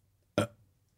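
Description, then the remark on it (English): A single short, loud burp erupts abruptly, a throaty low rumble with a raspy edge that quickly fades, surrounded by quiet. “This is amazing, but I'm not the one doing all the burping this episode.”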